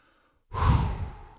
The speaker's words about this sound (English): All right, keep breathing, people. Come on, take a big deep breath with me.